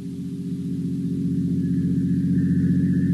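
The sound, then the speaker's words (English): A motor car's engine drones steadily, a low, rumbling hum that grows slightly louder as it approaches a decaying, weather-boarded house on hot, glimmering marshes, with no voices. “Only the heat on the glimmering marshes and the decaying, weather-boarded house as a motor car approaches.”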